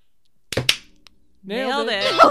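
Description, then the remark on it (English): Two sharp hand claps land in quick succession, then a short quiet gap before a person starts talking or vocalizing in a wavering, sing-song voice. “Clap first.”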